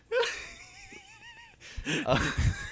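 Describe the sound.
A person imitates a dog with a thin, wavering whine that slides up and down in pitch, then breaks into a louder run of breathy, yelping vocal sounds.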